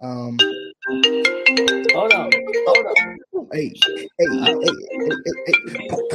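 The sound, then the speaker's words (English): A melodic phone ringtone for an incoming call plays loudly, its bright tones repeating in a quick rising-and-falling pattern while voices talk and chatter over it. “What's taking you so long to answer the phone?”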